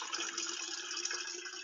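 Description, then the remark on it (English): Steady rushing water runs continuously as someone gets some water, like a tap pouring or a vessel filling, an even hiss of liquid with no voices over it. “I'm getting some water.”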